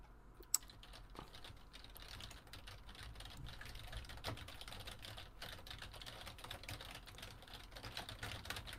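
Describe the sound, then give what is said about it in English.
Rapid, uneven clicking of keys on a computer keyboard as someone types a website link, a steady stream of small taps over a faint low hum, with no one speaking. “I'm typing the link.”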